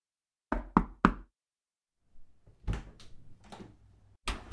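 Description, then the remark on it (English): Three firm, quick knocks on a door, followed after a pause by softer rattling and shuffling sounds, then a sharp, loud thump at the end. No one speaks. “Your doorbell isn't working.”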